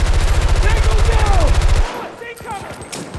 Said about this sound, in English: Oh shit! That's a lot of gunfire.